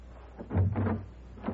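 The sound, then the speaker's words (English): A door is opened: a low, muffled thud and shuffling movement lasting about half a second, followed by a brief quiet and a short click near the end. “Open the door.”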